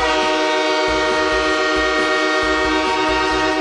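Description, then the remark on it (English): A train horn blares loud and steady for several seconds over the low rumble of the train rolling past. No voices are heard. “No boards, all trains. All aboard!”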